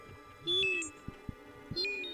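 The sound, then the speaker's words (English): The astronaut droid R2 beeps in two bursts of high, stepping electronic chirps, accompanied by lower warbling tones and a few short sharp clicks in between. “He's beeping.”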